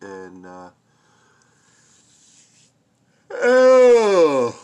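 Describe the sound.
A big, drawn-out yawn: a short voiced sound, then a faint breathy intake, then a loud, stretched vocal groan whose pitch slides and wavers for over a second before stopping.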